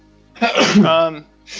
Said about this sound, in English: Bless you, brother.